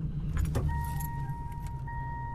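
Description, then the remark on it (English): A car engine cranks and catches, settling into a steady low idle, with keys jangling brightly near the start and a thin electronic tone humming alongside. “Yeah, either Buck is starting his car or there's a lot wrong with the video sync.”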